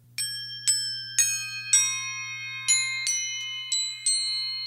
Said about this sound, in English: These guys over here, which are called crotales, which are... Do you want to bang on them so we can hear while you're talking?